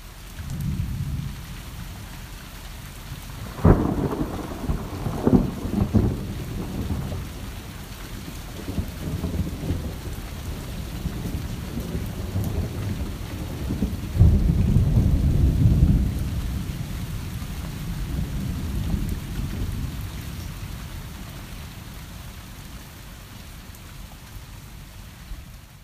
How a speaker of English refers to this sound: So I'm going to summon some rain and thunderstorms, which I love, because we haven't had one in a long time.